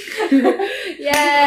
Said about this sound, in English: All right, actual claps.